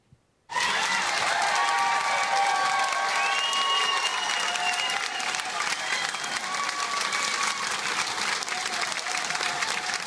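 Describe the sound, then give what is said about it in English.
A large crowd bursts into loud, sustained applause and cheering after a brief silence, as a yes vote is announced, with whistles and shouts rising over the clapping. It has the slightly harsh feel of a cell phone recording. “And here's the way people responded, caught on a cell phone.”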